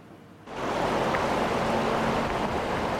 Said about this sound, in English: The junction of Highway 1 and 97 through Cache Creek, a makeshift creek bed Thursday. The rushing water pushing rocks and debris tumbling down the road surface. The force of the water, enough to undercut the highway at two river crossings